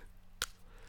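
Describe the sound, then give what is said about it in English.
A single sharp, crisp crunch of a Green and Black's milk chocolate bar being bitten, a brief bright snap standing alone against a low, steady background hum. “Speaking of chocolate, I'm just going to chow down on this Green and Black's milk chocolate bar.”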